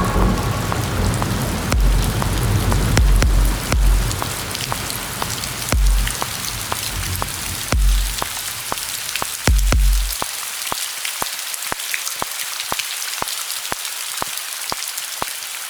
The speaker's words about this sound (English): I think you left your metronome on when you were recording.